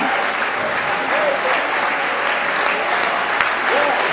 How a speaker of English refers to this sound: Let's give the Lord a hand clap of praise right now.